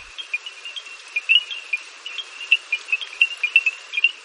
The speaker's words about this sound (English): In Masai Mara National Reserve, small frogs create a sound similar to African stone xylophones. Who knew? Bernard Fort found shelter from the storm under a small wooden bridge where he recorded this evening chorus.